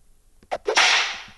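A bullwhip whooshes through the air in a couple of quick swishes, then snaps with a loud, sharp crack that trails off into a hissing tail, with no one talking.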